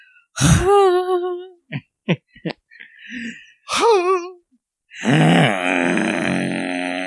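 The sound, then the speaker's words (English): A person vocally imitates the special lion-like honking sound made by Mr. Limpet: two loud, strained, rising-and-falling honks separated by short clicky grunts, then a longer, rougher growling honk at the end. “Mr. Limpet does this special lion sound that I tried to imitate earlier.”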